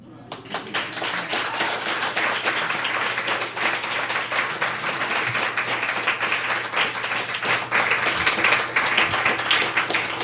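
A crowd applauds steadily, many hands clapping in a dense, even wash of sound that stays loud for the whole stretch without pausing.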